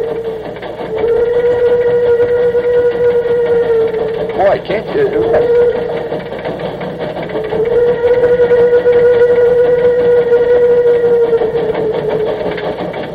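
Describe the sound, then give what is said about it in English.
The steam locomotive the General sounds its whistle in two long, steady, mid-pitched blasts with a short break between them, over a constant chugging engine rumble, on a record issued by the Louisville and Nashville Railroad. A man's voice speaks briefly. “There's her whistle.”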